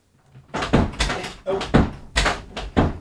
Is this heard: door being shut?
yes